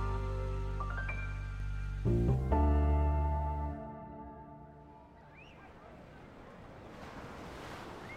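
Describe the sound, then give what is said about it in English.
Ocean waves roll and wash ashore in a steady, hissing roar that grows toward the end, mixed with sustained musical tones and a low rumble early on; no one speaks. “We're fully engulfed in that, you know, liquid. And we're waiting for this magical wave to come.”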